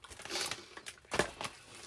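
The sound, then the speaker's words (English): Crinkly plastic popcorn bags rustle as people eat popcorn while sitting in a closet, in short, irregular bursts, with a sharper crackle near the middle, fairly quiet and with no talking. “Can you hear the bags rustling?”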